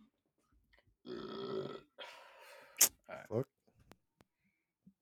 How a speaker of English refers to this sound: Hold on, I got a burp.